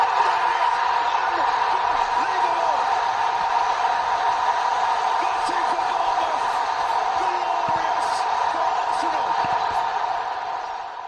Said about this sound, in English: And here's that winner and the pretty dramatic crowd noises. In goes the corner, cleared only as far as Nelson has to get his shot right.